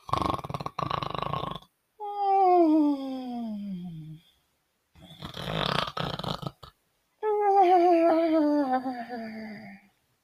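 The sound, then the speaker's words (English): A voice imitates a girl snoring as she falls asleep in a bed: two exaggerated cycles, each a harsh, rasping inhale followed by a long, drawn-out voiced exhale that slides downward in pitch. Fairly loud, with no other talk. “Snored Goldilocks. She had fallen asleep.”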